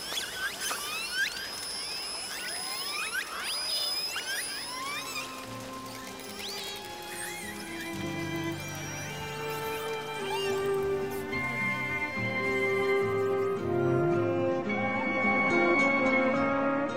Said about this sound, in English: Pitch darkness, he recorded this with a hydrophone as some 98 whales blew and spouted around his boat.